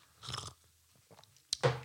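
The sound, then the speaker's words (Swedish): Wet chewing of fruit soup with fruit cocktail, with a few squelchy bites and mouth sounds, a sharp click, then a louder burst of chewing at the end. No talking. “Det är fruktsoppa. Fruktecocktail!”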